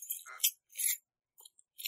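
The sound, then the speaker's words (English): A quarter flipped off a table drops and clatters, giving a few bright, high metallic clinks and skitters in short bursts before settling, with no voices. “The quarter flipped off the table.”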